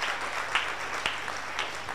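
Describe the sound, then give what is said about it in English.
A crowd applauds steadily, clapping their hands together for Jesus, many overlapping claps forming a dense, continuous patter with a few sharper individual slaps standing out. No one speaks over the clapping. “And clap your hands together for Jesus again.”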